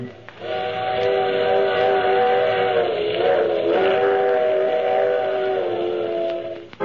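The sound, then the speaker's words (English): A loud, sustained steam train whistle sounds for several seconds, its steady chord wavering slightly, over the rumbling hiss of a rolling train. “I take this same train every week at the same time.”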